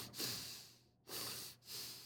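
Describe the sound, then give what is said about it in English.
A voice imitates a toddler's heavy breathing: three loud, airy, noisy breaths in a row, each a rasping rush of air separated by brief pauses, with no words spoken. “And I can hear him breathing.”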